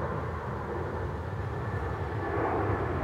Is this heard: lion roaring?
no